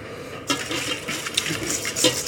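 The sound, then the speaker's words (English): A big splash of vanilla extract is poured into a pot of cream, with light clinks and stirring sounds of kitchen utensils around it and no talking. “I like a nice big splash of vanilla.”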